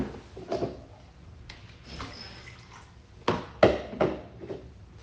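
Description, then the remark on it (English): Water splashes and trickles into a cup that has a small hole made in it, a soft continuous pour punctuated by a few sharper sloshing bursts near the end. No one speaks. “This cup looks beautiful, except, look what happens when you pour water into it.”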